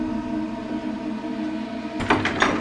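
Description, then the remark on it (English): A door handle is jiggled and rattled in a few quick, clattering jolts near the end as someone tries a door locked from the outside, over a steady low humming drone. “The door's locked from the outside.”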